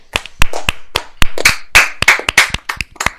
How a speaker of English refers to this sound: And as we do at the end of every episode, we're going to clap it out.